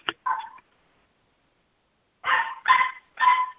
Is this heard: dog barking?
yes